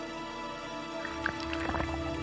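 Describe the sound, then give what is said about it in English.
Small watery splashes, drips and gurgles as a hydrophone, an underwater microphone, is lowered into water to listen and record, starting about a second in, over a steady low electrical hum; fairly quiet, no talking. “Eric is lowering a hydrophone, an underwater microphone”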